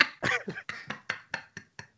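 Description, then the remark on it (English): A quick series of about eight harsh, breathy coughs, coming in a steady rhythm that gradually softens and spaces out, with no talking. “Sorry about that. I coughed.”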